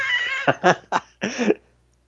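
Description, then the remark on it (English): A fuzzy domestic cat vocalizes: a drawn-out mew followed by several short, chirpy meows in quick succession, fairly loud and with no talking. “my cat is now very interested in podcasting as well.”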